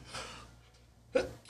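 An abrupt sneeze: a soft breathy inhale, a short pause, then a sharp catch and a loud explosive burst at the very end, with no talking.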